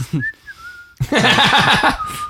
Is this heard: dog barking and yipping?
no